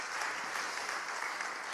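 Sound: audience applause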